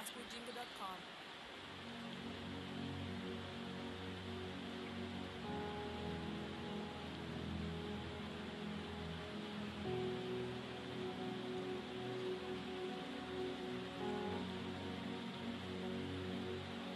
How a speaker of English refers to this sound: Those of you here in Kumasi, I think you can feel the rain and the cold. Please do not slip off. Do not yield to the temptation of the weather. Can you guys hear the feedback of the rain? You can hear it. It's raining seriously via.